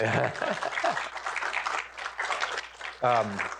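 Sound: audience applause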